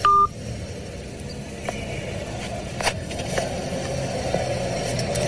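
phone call hang-up tone

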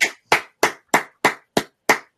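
golf clap

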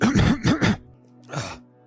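cough

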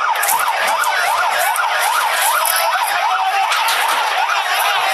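sirens

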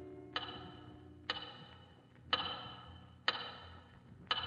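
large clock ticking

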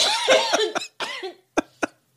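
coughing fit

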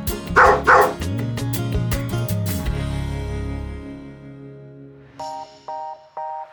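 dog barking

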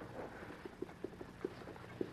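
horse hooves approaching

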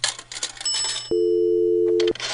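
telephone number being dialed

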